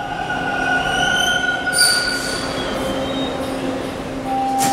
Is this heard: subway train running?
yes